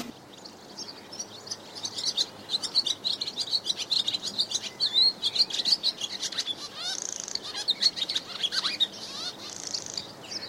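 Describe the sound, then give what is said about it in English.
Swallow song: a fast, continuous stream of high twittering chirps and warbles, busy and bright, running throughout with no one speaking. “Tweet of the Week is Swallow.”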